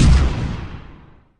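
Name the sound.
cannon firing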